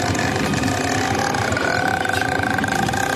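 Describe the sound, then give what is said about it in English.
A voice imitates the mother ghost's crackling croak from the throat in a movie, a steady gravelly rattle held for about three seconds at even loudness, with a faint droning tone running through it. “But there's also the mother ghost makes this crackling noise in her throat.”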